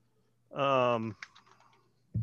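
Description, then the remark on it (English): A short burst of a voice is followed by a few quick, light, soft clicks of computer keyboard typing, ending with a low thump. “Why do I hear typing?”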